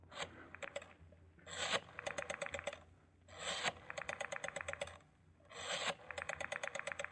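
A rotary telephone being dialed with the phone number of a blackmailer: each digit brings a raspy whir as the dial turns, then a quick, even train of ticking clicks as it spins back, repeated for several digits with no voices.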